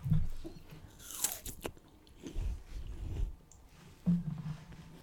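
A crisp bite into a crunchy pear for an ASMR recording, followed by several seconds of moist, muffled chewing with a few sharper crunches, and no talking.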